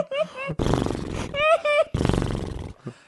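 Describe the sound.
A person imitates a horse neighing, alternating wavering, high whinny-like tones with rough, breathy blasts, repeated twice over about three seconds, loud.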